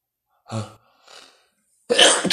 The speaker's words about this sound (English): Give me one more second. I keep sneezing. Hold on.